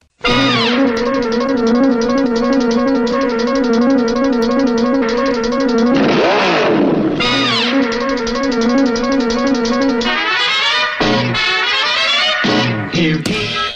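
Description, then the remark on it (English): A loud, brassy classic cartoon theme song plays with steady, bright melodic lines, while a swooping engine rev rises and falls midway through the music, followed by punchy accented bursts. “It is the final round of our pop culture pop quiz. The theme is classic cartoon theme songs.”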